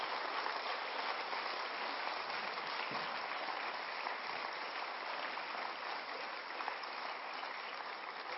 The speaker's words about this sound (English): And I know you all applauded, but I think you got to do it on your feet. Amen? Amen.